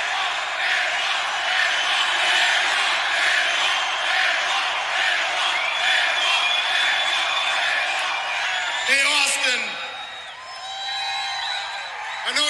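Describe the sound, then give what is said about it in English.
A large SmackDown wrestling crowd chants for hometown wrestler Chris Benoit, roaring loudly and steadily in a dense wall of voices, with a sharp burst of whoops near the end before the noise eases slightly. “This crowd chanting for hometown boy Chris Benoit.”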